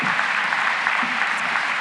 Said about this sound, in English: Let's welcome them. And just, you don't know them, but you can clap for them.